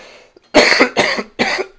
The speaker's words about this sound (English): That's my cough. You're welcome.